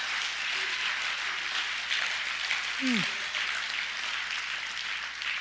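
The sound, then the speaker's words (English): A church audience applauds for the Lord during a sermon in a steady, dense wash of clapping that holds evenly throughout, with a brief falling vocal cry rising out of the crowd about midway. “Could somebody in the building just give the Lord an applause right now?”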